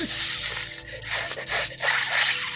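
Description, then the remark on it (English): Snakes hissing in a series of loud, breathy bursts, about four long sibilant hisses close together with short gaps, and no talking. “They were objecting with every hiss out of their mouths, but she just couldn't understand them.”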